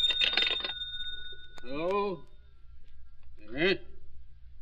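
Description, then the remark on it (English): A telephone rings once in a short, bright burst, its tone lingering faintly as a voice speaks a couple of brief phrases over a low background hum. “I decided to say goodnight and forget the rest of the interrogation until the next morning when the phone rang again.”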